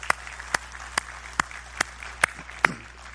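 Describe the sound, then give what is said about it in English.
Slow, steady clapping: seven sharp, evenly spaced claps about half a second apart, moderately loud, with no voices over them. The applause congratulates a pastor who will represent Montana Southern Baptists on the Southern Baptist Convention's Executive Committee. “And I do think that that merits applause and appreciation and congratulations”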